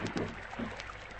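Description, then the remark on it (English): A lugger moves through water with a steady wash and churning, rising in a couple of soft surges over the short stretch, with no voices. “Stop that boat for a moment.”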